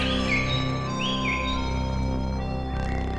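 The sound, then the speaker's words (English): A low harmonica note drones steadily throughout, rich with buzzy overtones, while faint bird-like chirps flit above it. “A little harmonica?”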